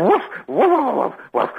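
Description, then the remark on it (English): A male caller on a phone line mimics a dog, letting out three loud, whiny barking yelps in quick succession, with brief pauses between them and no ordinary speech. “Yeah, he likes to phone up and pretend he's a dog.”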